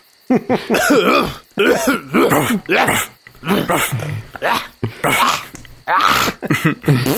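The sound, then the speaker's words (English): A person vocally imitates a wheezy, barking cough, like a cough mixed with a bark, producing a series of rough, harsh bursts in an irregular rhythm, loud, with short pauses between. “And listening carefully, you hear this coughing, wheezing. So it's like cough mixed with bark each time that they do it.”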